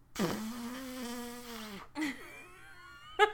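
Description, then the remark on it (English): A voice imitates a fart with a long, buzzing raspberry of steady pitch for about a second and a half, then adds two short, sputtering blurts. No talking. “I can't make a fart noise. Here, we know how to do this.”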